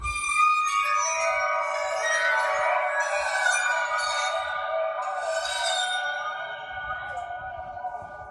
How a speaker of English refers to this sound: I'm going to give you a few sounds from one of my favorite shows, which is Wicked. One, the infamous water phone.